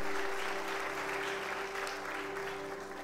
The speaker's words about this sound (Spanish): Denle un aplauso de agradecimiento al Padre, pero bien fuerte. Amén.